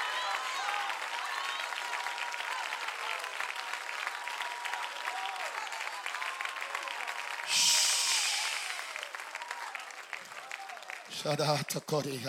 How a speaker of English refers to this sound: Oh, clap your hands and shout, life has come.